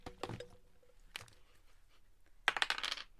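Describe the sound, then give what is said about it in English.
A small hard die clatters and tumbles across a tabletop during a tabletop game roll, a few sharp rattling impacts followed by a quick burst of rapid bounces as it settles, fairly quiet; it lands on a 1. “Let me find a dice. Nope, that's the right shape.”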